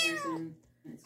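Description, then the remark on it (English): A little black and white tuxedo kitten named Stanley, found in a driveway in Omaha, gives one thin, high-pitched mew that slides downward in pitch, clear, then a brief pause before a faint start of another sound. “Stanley was a little black and white tuxedo kitten, and he appeared in the driveway mewling somewhere in Omaha.”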